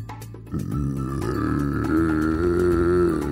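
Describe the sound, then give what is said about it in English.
A low, rough, angry growl from a critter inside a dark cave starts after a brief pause and holds steadily for about three seconds, swelling slightly louder toward the end with a menacing, rumbling tone and no talking. “The growl was low and sounded very angry.”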